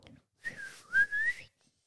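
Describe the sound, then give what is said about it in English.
A person whistles a short birdlike call up close, a clear tone that dips and then slides upward in pitch over about a second, with no talking. “It's a bird whistling, of course.”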